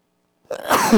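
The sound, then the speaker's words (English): A single harsh cough right into the microphone, a short raspy burst after a moment of silence, with a throaty, voiced tail as it ends. “Everybody loves a cough through a microphone, right?”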